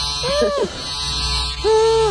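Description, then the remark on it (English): A vibrator's electric buzz drones in two bursts, its pitch bending up and then sliding down each time, over a steady low hum. “I can't hear you over the buzz of your vibrator.”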